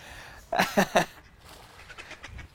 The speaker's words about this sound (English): And there's some gray ducks there.